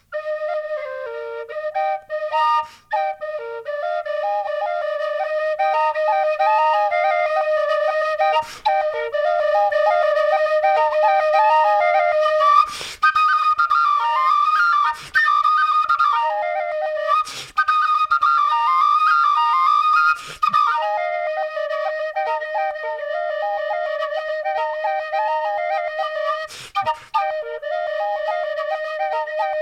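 A modified double whistle plays a bright, continuous folk melody for about half a minute, two close tonal lines moving together, with a few short percussive clicks between phrases and no voices.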